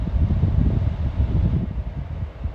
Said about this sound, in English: Do you want to turn that aircon on? Yeah, you're getting a bit hot. It might be quite noisy, but let's give it a go. Just put it on a low fan.